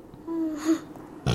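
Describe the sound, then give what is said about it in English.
A drawn-out, low, croaky burp that rumbles for about a second, steady in pitch, followed by a short abrupt thump at the end. “A burp.”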